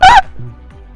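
A single loud hiccup, a brief squeaky, honk-like vocal burst at the very start, then only a faint low hum for the rest of the second.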